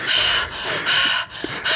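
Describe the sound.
A voice imitates heavy panting after running: rapid, loud, airy breaths in a steady rhythm, about five huffs in quick succession with no talking.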